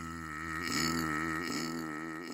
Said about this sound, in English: Their mouth was so big it made an echo when they burped. I think it's still echoing around the library stacks. Listen.